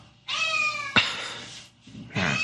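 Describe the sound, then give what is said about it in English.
A cat meows insistently, with two long drawn-out yowls followed by a shorter, rising cry, loud, with no talking over it. “I don't know if you guys can hear that cat, but I'm going to kick him in the shin in a minute.”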